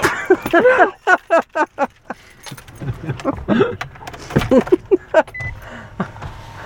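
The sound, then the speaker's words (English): Car power windows whir in a rapid series of short, stop-start bursts, fairly loud, with brief pauses between them and a few softer bursts later on, as the windows are being lowered. “Put your windows down.”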